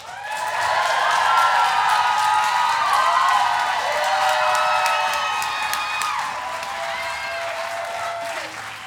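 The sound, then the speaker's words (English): A crowd applauds and cheers loudly for several seconds, dense clapping mixed with high whoops and shouts, holding steady before easing off slightly toward the end. “I want y'all to get up out of your seat and please applaud for the amazing sex nerd”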